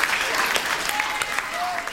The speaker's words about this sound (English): The cheer ripped open every ear in the place.